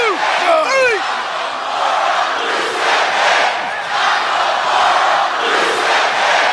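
A loud, dense arena crowd on Christmas night roars and cheers continuously during the Shinsuke Nakamura versus Rusev United States title match, with a burst of whistles and shouts at the start and rising swells of chanting throughout.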